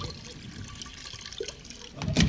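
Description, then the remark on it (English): Cognac is poured into Polly the parrot's dish: a soft, steady trickle of liquid for about two seconds, swelling into a brief, louder splash at the end. “Here's the cognac. I'll pour a little into your dish.”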